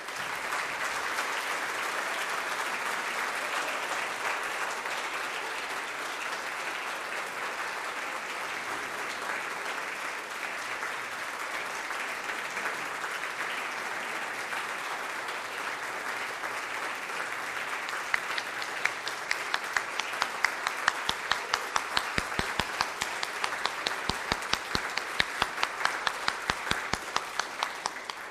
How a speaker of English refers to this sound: Let us welcome him with our applause.